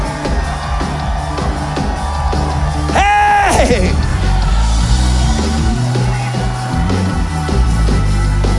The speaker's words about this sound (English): You are when you're screaming at your kids. Shout like you're screaming at your kids.